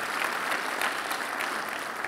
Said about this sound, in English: And so if you're thankful for a church full of vision and obedience and 5 generations, would you give the Lord one more big round of applause? It's incredible. Hallelujah.